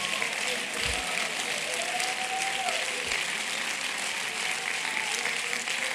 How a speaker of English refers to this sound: Oh, somebody clap your hands, give them praise.